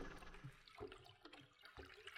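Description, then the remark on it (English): Water sloshing and lapping against the hull of a ship on the Atlantic Ocean on a calm night, with an irregular, gently pulsing wash, steady, with no voices. “The gentle sound of water rippling against the hull.”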